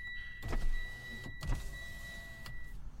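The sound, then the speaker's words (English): A car's power window motor whirs as the glass lowers a little, a steady electric hum with a few soft clunks, heard inside the car with no one talking. “I think I cracked the windows a little bit.”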